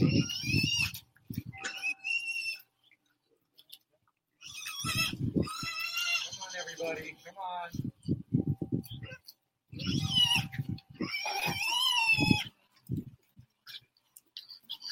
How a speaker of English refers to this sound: When I turned around, they were literally, there was a parade behind me of geese and pigs and I got some peanuts for everybody.